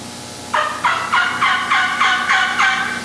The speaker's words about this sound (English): Deep, coarse, throaty, slow, like an old gobbler in the fall, like right now. Then real slow, almost stop yelping sometimes.